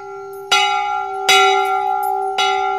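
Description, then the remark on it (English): A big brass bell in a town square rings out three times at an uneven pace as a horse nibbles on its rope, each loud clang leaving a long, humming resonance that lingers between strikes. No voices are present. “It was the rope of the bell, the big brass bell the townspeople were supposed to ring when they felt they'd been wronged, the bell that had never been rung before.”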